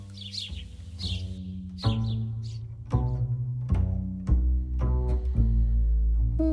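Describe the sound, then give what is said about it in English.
Short bursts of high chirping house sparrow song in the first couple of seconds, set against sustained, swelling musical chords that shift every second or so and carry on to the end. “And house sparrows, these cheerful chirping accomplices, will continue to keep us company with their sweetly chattering reassurances far into the future.”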